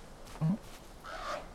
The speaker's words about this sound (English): Okay. Oh, bird. Bird's here.